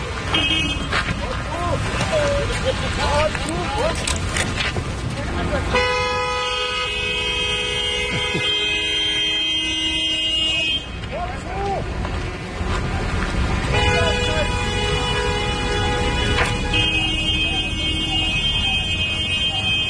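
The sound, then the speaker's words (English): A car horn blares in two long, sustained honks, loud, as the car pushes through protesters blocking a street in Munich, Germany, with people shouting and talking throughout. “A car refused to pause while protesters in Munich, Germany, were blocking the street.”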